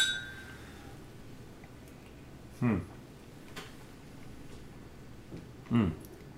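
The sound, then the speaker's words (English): Two brief glassy clinks of whiskey glasses touching in a toast, about three seconds apart, ring out fairly loud over quiet surroundings. “Let's jump into it, shall we? Yeah. Cheers.”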